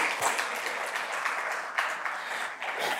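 A crowd applauds steadily, dense overlapping claps at a moderate, even level for a few seconds without pause.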